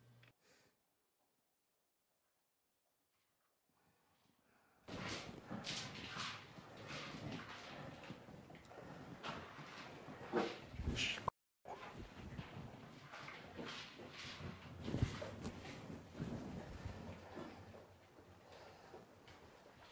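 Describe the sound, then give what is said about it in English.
After a quiet start, a house dog knocks a treat-dispensing toy, its openings set so a lot of treats come out, around a hard floor, producing loud, irregular clattering knocks and scrapes that continue steadily, with a brief pause partway through. “But in the first stages of using it, we want the dog to know this is a treat toy.”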